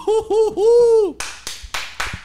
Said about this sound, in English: Clap it up, everybody. Clap it up. Clap it up.